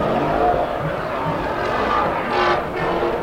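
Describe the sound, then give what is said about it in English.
A V8 car engine rumbles steadily at the Ford out front area, its deep throaty drone swelling slightly with a couple of brief revs, heard with some outdoor background noise and no clear speech. “Nothing like a camera V8, man.”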